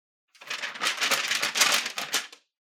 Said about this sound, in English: it's not all that helpful to just stand there rustling papers.